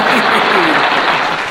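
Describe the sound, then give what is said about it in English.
Loud, sustained applause from a studio audience, a dense wash of clapping that stays steady for the full moment, with faint voices mixed underneath. “The studio audience loved it. They went crazy. Yeah, like three times the applause.”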